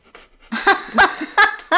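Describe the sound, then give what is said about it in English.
Heavy, raspy breathing right up against a microphone: four or five loud, panting puffs in an uneven rhythm after a brief quiet start, with no talking. “breathing in the microphone.”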